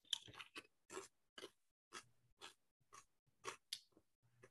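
Crisp crunching of a roasted garlic and Asiago cheese chip, about a dozen sharp bites and chews in a steady rhythm with brief pauses, loud with no talking.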